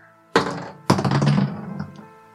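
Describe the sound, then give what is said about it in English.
Dice being rolled on a table: a sharp thunk, then a second louder toss that clatters and rattles briefly before settling, the rolls coming up a 4 and a 3. No talking. “Let's get these rolls.”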